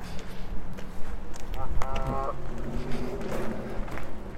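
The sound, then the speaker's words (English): Geese honk in a brief burst of two or three short, nasal, harmonic calls midway through, set against steady outdoor rumble and the scuff of footsteps walking along the Manchester Canal path. “Oh, here we go, geese again.”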